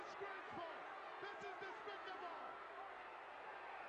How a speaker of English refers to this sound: He slapped Elizabeth. He slapped Miss Elizabeth. Unbelievable. Has anybody ever put their hands on him? For all these years, can you believe that someone has actually slapped his lady? Jake Roberts, hitting a woman?